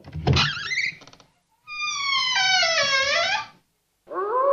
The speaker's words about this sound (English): Ooh. I mean, werewolf. Satan's snot. It's a werewolf. It's giving me the heebie-jeebies.